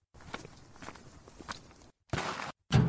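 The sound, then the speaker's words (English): Several soft footsteps walk along at a steady pace in a cemetery at night, then stop, followed by two louder, sharper knocks as a knee bumps into a wheelbarrow. No voices are heard. “I banged my knee on something. What is that thing, huh? A wheelbarrow?”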